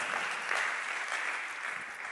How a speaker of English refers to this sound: Come on, aren't you thankful? Somebody just clap your hands and just thank God for that.